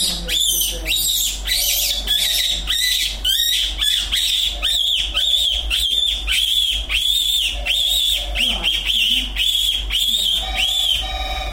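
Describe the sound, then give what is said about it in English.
A person imitates a rabbit's call, as done to make a fox come, with a rapid, continuous series of shrill, high-pitched squealing bursts, loud and steady for about eleven seconds without any talking. “with impression of a rabbit”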